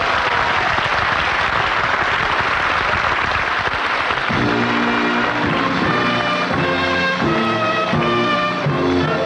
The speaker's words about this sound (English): Round of applause.